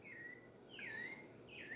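Faint birdsong in the distance: a few clear, sweeping whistled calls repeat over a soft background hiss, with no talking.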